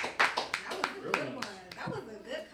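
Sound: people clapping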